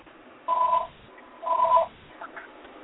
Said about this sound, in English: I hear a phone. Yeah, unfortunately, it's my second phone, and I don't know how to get it off.